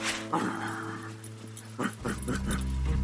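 A Shiba Inu puppy named Zakarian, owned by Detroit Lions linebacker Zach Follett, whimpers and lets out a few short, high yips, with a steady low hum running underneath.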